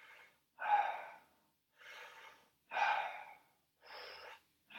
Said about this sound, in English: Keep the connected breathing going.